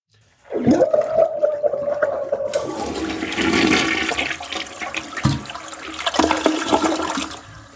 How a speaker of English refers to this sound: Would you excuse me for a minute? I'm going to go flush my head in the toilet.